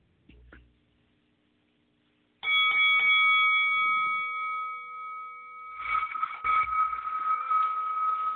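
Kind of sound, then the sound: signal or alarm, bell ringing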